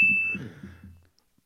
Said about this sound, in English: All right, so I'm going to make a sound. It's like the door opening.